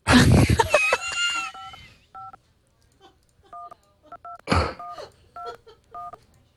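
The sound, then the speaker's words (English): A quick series of short, clear phone keypad dialing beeps from an Android phone SDK emulator, evenly spaced and fairly loud, interrupted by a couple of brief noisy bursts like a cough, with no talking. “Apparently, I'm calling somebody.”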